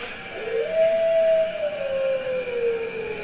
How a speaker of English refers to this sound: I guess so, because it's a howl.